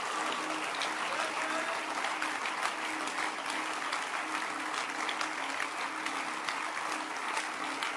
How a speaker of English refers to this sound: Clapping your hands for Jesus.